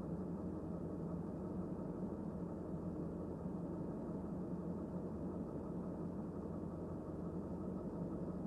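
A train's engines idle steadily at a platform before departure, a continuous low rumble and vibration felt through the seat that holds at an even level throughout, with no voices.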